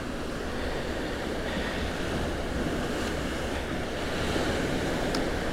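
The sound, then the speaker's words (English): Steady, continuous rushing of the River Sid flowing by the Olmer Bridge in Sidmouth, even in level throughout, with a faint breath of wind and no voices. “I've just crossed over the Olmer Bridge over the River Sid in Sidmouth.”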